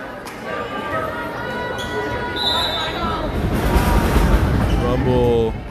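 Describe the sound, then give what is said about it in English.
A volleyball is slapped, brought up, tossed over and slapped harder in a quick series of sharp hits, set against busy crowd noise and overlapping voices that swell louder toward the end. “They slap it, they bring it up, they toss it over, they slap it again, they bring it up and slap it harder.”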